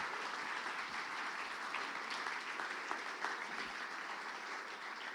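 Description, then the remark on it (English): A church audience applauds steadily for a group of people standing up, a dense wash of many hands clapping at an even, sustained loudness for several seconds with no voices rising above it. “Let's give these guys a round of applause as they stand and stay standing for me.”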